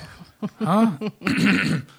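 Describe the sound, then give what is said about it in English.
A voice makes a few gravelly, exaggerated throat-clearing noises, like a mock imitation: a short rasp, a longer rough grumble, then another drawn-out hack. “You want to clear his throat?”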